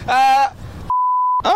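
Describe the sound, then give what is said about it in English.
A steady, pure censor beep lasting about half a second abruptly replaces a spoken word, with a voice talking just before and resuming right after it. “Why was that beeped? That was bleeped.”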